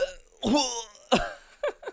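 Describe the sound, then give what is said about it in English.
Several harsh coughing bursts: a strong strained one, then a sharp second cough with a pained, voiced edge, and finally two quick, lighter coughs in succession. “That didn't really sound like a cough, the second one.”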